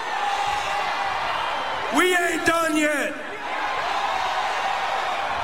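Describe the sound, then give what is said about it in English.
A large stadium crowd cheers and whoops in a steady, dense roar throughout, while a man speaks briefly and loudly over the noise near the middle. “So I'll make sure to hit y'all back next year, and I hope the crowd's the same.”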